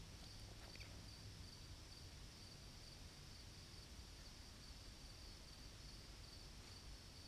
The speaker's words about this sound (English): I don't know if it's coming out, all the crickets.